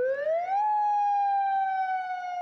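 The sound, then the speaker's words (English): A loud dam warning siren, one of a system of six sirens along the river at the Cleveland Dam, rises quickly in pitch, then holds a steady, slowly falling wail. It sounds alone and continuous, with no voices. “It's a system of six sirens along the river.”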